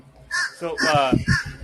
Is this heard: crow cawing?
yes